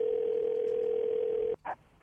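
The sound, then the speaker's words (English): A steady, unbroken telephone dial tone at the start of a prank call to a pizza place hums loudly for about a second and a half, then cuts off abruptly, followed by a brief soft click or blip on the line. “Phony phone call time.”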